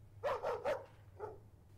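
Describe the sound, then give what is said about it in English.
A dog, Lucky, barks three times in quick succession, sharp and fairly loud, then gives one softer bark after a brief pause, over a low steady hum. “Where is that dog? It's like he's in the house. He's barking so loud.”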